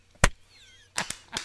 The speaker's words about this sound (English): Okay, here's my clap.